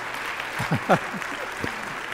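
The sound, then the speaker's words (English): An audience claps in praise of the Lord in a steady, dense wash of applause, with a few brief voices calling out over the clapping partway through. “You can clap on that one too, because praise the Lord on that.”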